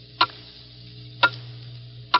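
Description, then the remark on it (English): A clock ticks steadily, three crisp, evenly spaced ticks about a second apart over a faint low hum, clear with no voices, counting down the last seconds of 1950 to the new year. “The clock is steadily counting them out.”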